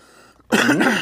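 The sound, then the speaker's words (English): A single loud cough bursts out after a brief quiet moment, raspy and throaty, sustained for about half a second with no talking around it. “I got a cough today for some reason.”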